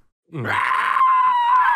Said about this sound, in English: I think that's the first time you heard that nasty inward scream.